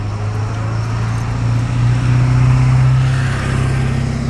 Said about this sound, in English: That was a loud truck, and it wasn't even that big, raggedy truck. Anyway, it's going forward, though, so it doesn't matter. Might have a super engine, so it doesn't matter how it looks on the outside, right? It made a lot of noise, though.